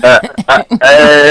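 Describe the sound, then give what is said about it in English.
A loud goat-like bleat, apparently imitated by a human voice: a few short choppy calls followed by one long, wavering, nasal "meeh". “Because we hear this, the goat put in voice.”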